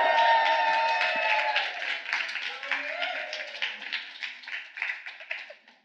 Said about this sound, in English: Applause. Come to the stage. More round of applause as they walk on stage. Woo-hoo-hoo!